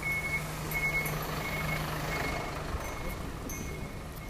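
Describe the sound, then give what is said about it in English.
A truck's reversing alarm beeps steadily in repeated tones over a low engine rumble as the truck backs onto the sidewalk, with no one speaking. “Truck backing onto the sidewalk.”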